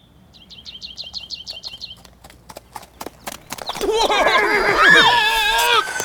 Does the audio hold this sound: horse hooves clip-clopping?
yes